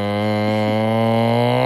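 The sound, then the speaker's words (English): A person voices a long, steady low moo in imitation of a cow, sustained and loud for nearly two seconds, with no other sounds. “Nice and like a cow.”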